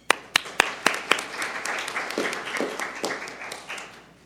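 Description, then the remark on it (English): Applause from an audience for the head table, opening with about five sharp, evenly spaced claps before swelling into a dense, steady patter of many hands clapping at moderate loudness, with no voices. “And with that, please give our head table a round of applause”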